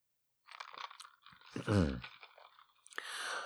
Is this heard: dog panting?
no